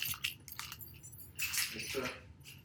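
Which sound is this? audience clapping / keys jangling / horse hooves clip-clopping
keys jangling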